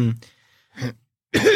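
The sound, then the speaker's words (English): A person gives a couple of short, rough coughs separated by brief pauses, followed by a strained voiced sound, like a performed cough. “He coughs a little bit and something black and awful comes out of his mouth.”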